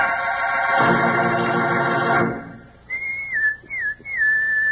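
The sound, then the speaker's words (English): After a brief loud, buzzy blast of sound, someone whistles a clear call in three quick phrases with sliding, swooping pitch, loud, with no talking. “Sounds like a pal of yours whistling for you, doesn't it?”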